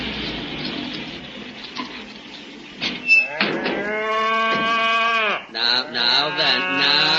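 After a few seconds of murmuring background noise, cows moo loudly, with several long, drawn-out bellows following one another and overlapping toward the end.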